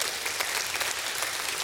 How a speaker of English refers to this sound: Do you believe that? If you do, give God a hand clap of praise.